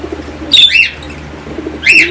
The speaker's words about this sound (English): Yeah, this guy's name's Red. I've never seen a pigeon that color. Yeah, well, there's over 300 varieties of pigeons.